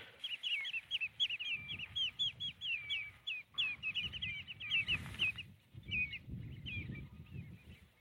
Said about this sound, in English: Those are redshanks calling. There are a whole load of redshanks here. They're just flitting around the shallows. Little wading birds, long beaks, long legs, for redshanks, obviously.